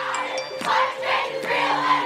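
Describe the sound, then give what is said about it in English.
A street protest crowd of young people chanting loudly in unison to demand urgent action on climate change, voices swelling in rhythmic surges about every half second, with steady high tones ringing over the roar. “Millions of young people took to the streets today to demand urgent action on climate change.”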